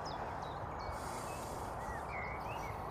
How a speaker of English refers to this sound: I'm just going to pause and listen to the birds for a second. Take a breath or two. I've been walking along the greenway. The road noise is still there. Birds are getting louder as I come away, further away from the road.